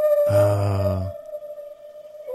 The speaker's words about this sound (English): There's some whales coming too.